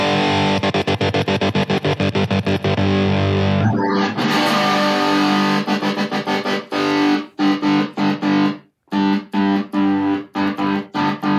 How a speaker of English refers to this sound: SOS. I was gonna say it's like we're communicating in guitar Morse code.